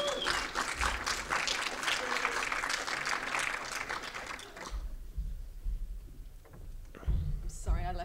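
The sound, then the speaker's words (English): An audience at a film screening claps in a dense, steady burst of applause for several seconds, then it quickly fades, leaving low thumps and faint murmuring voices. “Round of applause, come on.”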